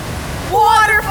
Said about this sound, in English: Waterfall!